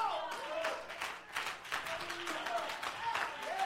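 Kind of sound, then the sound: crowd, audience clapping hands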